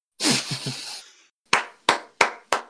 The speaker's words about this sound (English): Slow clap as he goes.